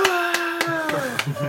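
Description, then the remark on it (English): A brief canned applause effect from an applause button: a handful of sharp, evenly spaced claps over a steady, bright tonal hum that slides slightly downward near the end, moderately loud throughout. “Applause button.”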